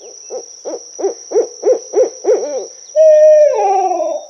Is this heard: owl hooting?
yes